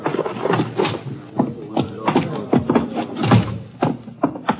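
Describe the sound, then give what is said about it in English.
A door is opened amid a busy series of muffled thumps, knocks and scraping clatter as a heavy man is carried inside by his feet, with shuffling movement continuing throughout and no one speaking. “I'll get the door for you.”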